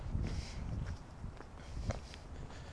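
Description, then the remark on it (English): Footsteps crunch steadily over a gritty, salted, cleared pavement with snow all around on a very cold day, fairly quiet, with a soft rhythmic scrape at each step and a faint outdoor hum behind. “It is really cold, there's snow all around me, but the pavements are clear and you get used to crunching around in the salt. I wonder if you can hear my footsteps.”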